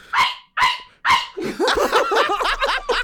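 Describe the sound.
A performer's voice mimics the dog Toto on stage, standing in for a live dog that wouldn't bark on cue, giving three sharp, loud barks in quick succession, followed by a longer run of rough, yappy growling and yipping noises.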